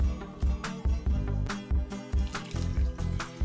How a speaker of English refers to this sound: Step two, you're gonna put the cold water into the bowl. Cold water into the bowl.